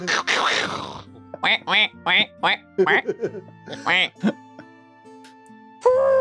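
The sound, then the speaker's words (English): A man imitates a strange duck, letting out a rapid series of nasal, quacking honks in short bursts, fairly loud, after a brief noisy rush at the start. “And making like a weird duck noise.”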